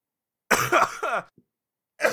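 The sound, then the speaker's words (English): Raspy throat clearing after laughing runs into a short burst of coughing, with a brief pause and then another harsh cough starting at the end. No one speaks. “oh, you made me laugh, cough.”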